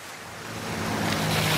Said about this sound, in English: Speak up. I can hardly hear you over all this dripping.